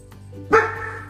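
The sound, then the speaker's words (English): A single sharp dog bark rings out, loud and abrupt against a quiet low hum, then fades quickly. “If I hold your paw, will you stop barking?”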